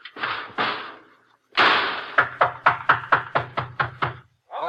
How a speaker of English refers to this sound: Okay, get in that lock and close the door.